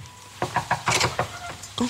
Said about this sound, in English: Who's knocked on the door?